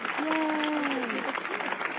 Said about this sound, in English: And with that, our self-ingratiating applause. I've earned it.